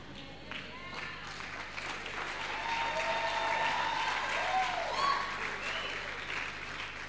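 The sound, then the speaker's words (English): An audience claps continuously for about seven seconds, a dense, steady patter that swells slightly midway, with a few voices and cheers rising above the applause. “So I don't know why you are clapping for me.”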